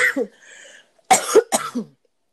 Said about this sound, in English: But I have like, sorry, I'm about to cough.